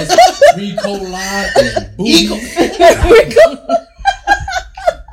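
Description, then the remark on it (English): A few short, rough coughs break through lively overlapping talk and snickering laughter, fairly loud, coming in quick bursts around the middle of the moment. “Mine need a cough drop. Here you go.”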